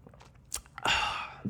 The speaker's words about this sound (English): You may have a sip now of your beverage.